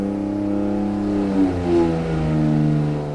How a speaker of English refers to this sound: Ah, the unmistakable sound of an engine on the other side of some very thick glass.